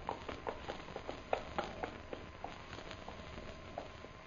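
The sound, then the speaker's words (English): An approaching horse's hooves clip-clop in a steady, uneven rhythm of sharp knocks, fairly faint, with no voices over them. “Horse come there.”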